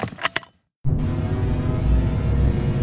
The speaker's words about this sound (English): If you want to make a load of racing space car sounds, mate, it's a pretty good deal.